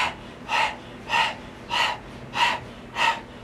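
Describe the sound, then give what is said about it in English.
Rhythmic open-mouth panting like a dog in the Breath of Fire breathing exercise, five breathy bursts at an even pace of about one every 0.6 seconds, each a soft hissing puff with no voice alongside. “Take your left hand, place it over the navel, and then open your mouth and begin to pant rhythmically, just like a dog.”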